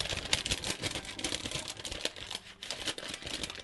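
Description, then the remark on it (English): Crisp paper rustling and crinkling with quick tearing scratches as a sealed envelope holding a question is torn open and its contents pulled out, heard clearly on its own with no talking. “It's sealed, and now for all you paper fetishists who tune into the show just for this moment.”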